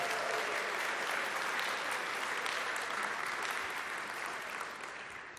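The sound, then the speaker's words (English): A sustained round of applause from a large crowd for mothers on Mother's Day, dense and steady clapping that holds at full strength for several seconds before beginning to ease off slightly at the end. “And likewise, give our mothers a big round of applause.”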